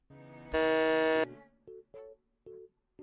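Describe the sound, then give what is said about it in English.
A harsh, loud game-show buzzer blares for under a second as a player buzzes in to answer in a guessing game, rich and rasping, followed by a series of short, mid-pitched electronic beeps spaced unevenly after it. “Get a buzz in.”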